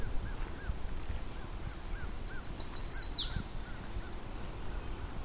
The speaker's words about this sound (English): Chestnut-sided warblers, there's enough disturbed area here for them to enjoy. It's not often I've come across multiple in one spot so readily. So you think a bird this loud would be easy to find. High up in a tree somewhere here.